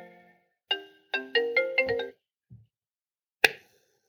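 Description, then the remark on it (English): A phone's melodic ringtone interrupts a reading, playing a quick run of bright electronic notes, clear, then cuts off, followed by a single sharp click a moment later. No one speaks. “Okay, that phone interrupted there.”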